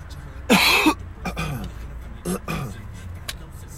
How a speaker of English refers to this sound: Nah, but yeah, I'm gonna try to keep this coughing to a minimum this episode, y'all, you know.